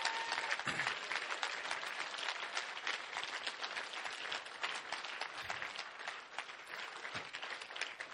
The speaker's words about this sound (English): Why don't we give an amazing round of applause to everyone that's been baptized this morning?